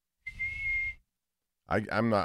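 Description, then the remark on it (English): A person lets out one loud, sustained whistle on a steady high pitch, breathy, lasting under a second; after a short pause, someone starts talking. “This is the loudest I can whistle.”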